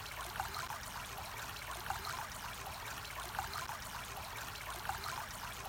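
Steady babbling of a shallow stream, water flowing past, rushing and trickling continuously with soft splashy bursts, fairly quiet, no voices.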